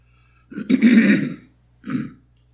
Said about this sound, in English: I have to excuse my clearing my throat